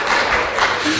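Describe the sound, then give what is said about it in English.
An audience applauds for a rented Triumph Bonneville motorcycle, a dense, steady wash of many hands clapping at once, holding an even loudness through about a second with no voices over it. “Let's hear it for the motorcycle.”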